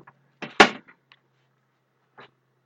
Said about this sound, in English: All right, and back from a tiny break for me to close the door because I forgot to do that.